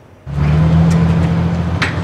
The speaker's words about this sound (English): Fueling up and then launching his jet boat on the Fraser River, Tyler Speed's River Monsters Adventures Company bills him as the Sturgeon Whisperer.